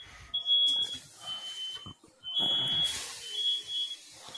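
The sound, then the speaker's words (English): A smoke alarm shrieks with a shrill, high-pitched tone in long repeated beeps, fairly loud, over clattering background noise, with brief gaps between blasts. “I would be more fucking worried about turning those fucking alarms off.”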